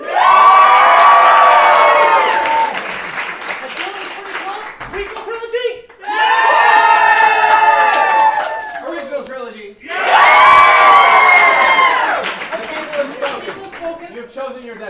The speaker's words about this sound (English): All right, now let's hear it by round of applause for the original trilogy.